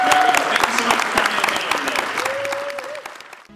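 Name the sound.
audience applause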